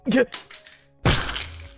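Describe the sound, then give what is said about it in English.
A phone gets stepped on and crushed: a sharp crack, a brief pause, then a louder crunching burst of breaking plastic and glass that fades into rattling debris. “It's your fault for leaving it where someone could step on it.”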